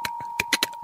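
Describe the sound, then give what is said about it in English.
About seven crisp clicks tap out at an uneven typing pace as a woman types on her phone keyboard, over a thin steady tone. “as she's typing.”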